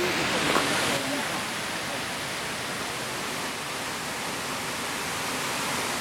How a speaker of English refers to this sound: we can see the falls cascading white water right down the rock face here.